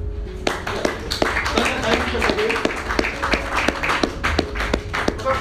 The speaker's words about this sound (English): For some time now, I want us to clap